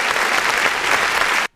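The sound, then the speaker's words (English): Loud, dense applause from a crowd, a steady wash of clapping that holds at full strength and then cuts off abruptly. “That was a long applause.”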